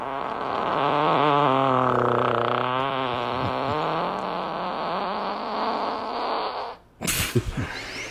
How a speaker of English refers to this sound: Golly. Almost sounded like, sounded like a Wookiee. I was going to say, you brought a band of Chewie. There's a part where his fart literally sounds like a Wookiee. Sounds like his butt's like being strangled.